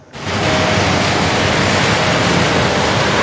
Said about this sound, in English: Well, the latest atmospheric river deluge has started to arrive here on the South Coast.